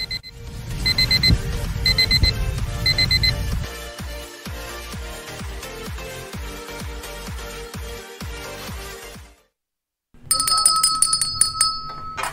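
An electronic alarm clock rings loudly with repeating high beeping tones over a busy jingle, pauses briefly, then starts ringing again with a shrill, insistent pattern.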